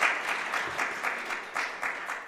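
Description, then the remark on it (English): A church audience applauds steadily to congratulate a couple expecting their first child, a dense, even patter of many hands clapping at once with small swells, no voices rising above it. “Yes, you can clap.”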